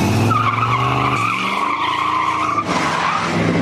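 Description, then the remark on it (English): A loud, sustained tire squeal as a car peels out, with a steady high screech over a roaring engine that shifts pitch midway and continues for several seconds. “I mean, anyone that does a peel out at the beginning of their videos, their dating videos, has got an issue.”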